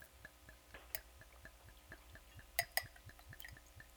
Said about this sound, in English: Pretty good. I'm pouring slow. I'm not drinking an entire mason jar. Don't worry. See how thick it is, though? Oh, cool. It has viscosity.